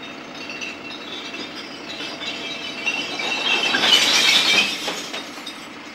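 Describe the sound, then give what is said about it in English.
A recycling truck raises its side and tips collected cans and plastics, or paper and colour-sorted glass, into compartments within its body, a steady rumble of clattering, clinking glass and debris that builds to a louder crashing surge before easing off, with no voices. “When necessary, the side of the truck is raised and the content is tipped into compartments within the body of the vehicle.”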